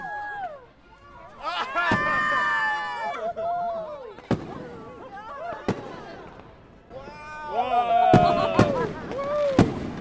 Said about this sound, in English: There's fireworks up, like 20 feet away from us. Oh my god. Oh my god. What? That was supposed to happen. That was crazy. Did it hit the car? Yes, that went all over the place. That looked like a fucking bomb.